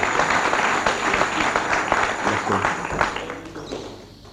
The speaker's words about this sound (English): Give him a good clap.